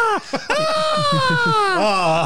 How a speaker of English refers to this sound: Sounds like seagulls.